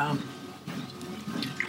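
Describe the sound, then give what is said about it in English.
Someone takes a quick drink of water, with soft sloshing liquid and a few swallowing sounds over a short, quiet moment. “Another water break.”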